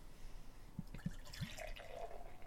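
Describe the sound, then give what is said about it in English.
Dark ale from an Oakland, California brewery pours from a can into a glass in a quiet, steady stream, with a few soft glugs at the start giving way to a fizzy, bubbling rush as the glass fills. No one speaks. “All right, and the pour.”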